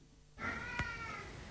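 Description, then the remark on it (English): A single drawn-out meow from Tiger, a male pet cat, clear, rising in from silence and holding for about a second before trailing off, with a soft click partway through. “This is my cat, Tiger.”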